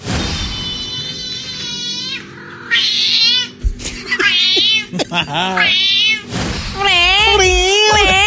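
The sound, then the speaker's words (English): A cat meows loudly and insistently in a series of long, wavering, drawn-out yowls with short pauses between them, heard on its own. “Even the animals in Liverpool have a Liverpool accent. This is Scouse Cat.”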